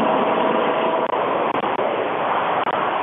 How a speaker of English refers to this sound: Yeah, sorry. I had to shut off my lawnmower.